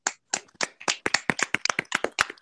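A short burst of hand clapping from a small group, with quick, uneven, sharp claps close to the microphone for a couple of seconds and no talking.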